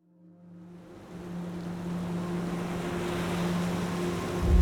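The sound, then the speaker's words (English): A passenger boat's steady low engine drone rides over rushing ocean waves and wind as it sails towards Australia in 1956, fading in from quiet and swelling louder throughout, with no voices. “In 1956, a young man stood on a passenger boat as it sailed towards Australia.”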